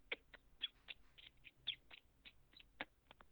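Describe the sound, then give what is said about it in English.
A string of short, high squealing notes, about a dozen in quick, uneven succession, the high part of a turkey yelp made by saying "keek" into a trumpet turkey call. Fairly quiet, with no talking. “You can make that squealing noise, and it makes a high part of a yelp.”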